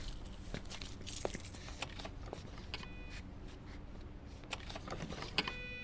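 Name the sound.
keys jangling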